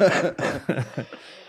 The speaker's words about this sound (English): You're coughing. You all right? You look healthy today, but you sound like you're dying of cancer.